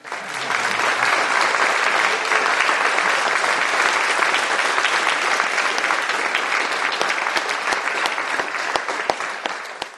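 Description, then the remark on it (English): A large audience at the Reading Room Live in the Lincoln Performing Arts Centre applauds a performer steadily for the full length, a dense, loud wash of clapping hands with no pauses and no voices standing out. “But nevertheless, the crowd give him a huge round of applause.”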